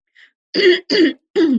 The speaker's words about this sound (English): And I'm sorry for this terrible cough that I have.